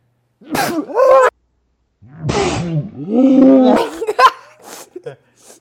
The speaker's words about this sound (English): Mmm. It's even up my nose. I might sneeze. Go. Oh God.